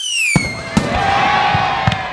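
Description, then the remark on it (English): Fireworks going off as a Christmas cracker is pulled: a high descending whistle followed by several sharp bangs spaced unevenly over two seconds, with a crackling, rumbling wash filling the gaps. No voices. “I had one once and it wasn't a normal bang. They must have felt it with a firework instead.”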